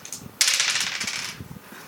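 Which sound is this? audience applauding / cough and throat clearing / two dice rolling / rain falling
two dice rolling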